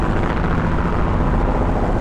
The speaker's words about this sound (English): I think that actually does sound better. More of a drone kind of thing. I slowed the sine wave way down.